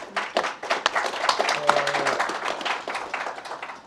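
A crowd applauds, with many overlapping hand claps forming a dense, steady crackle that holds at an even, moderate loudness for the full few seconds, with no voices standing out.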